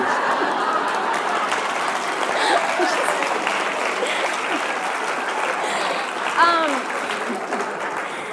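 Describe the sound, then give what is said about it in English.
Sustained audience applause fills the room, a dense steady wash of clapping at even loudness throughout, with a brief whoop or cheer rising out of the crowd near the end. “You cut off my applause.”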